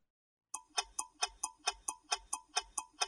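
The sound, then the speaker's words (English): A mechanical clock ticks steadily, about four even ticks per second with a crisp metallic click, starting after a brief silence and continuing alone without any voices. “Clocks tell us what time it is”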